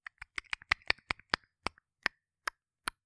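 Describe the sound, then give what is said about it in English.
Sharp, dry clicks come in a quick irregular flurry at first, then slow and spread out into single snaps toward the end, with silence between them and no voices. “And you're definitely recognizing that clicking noise coming back again.”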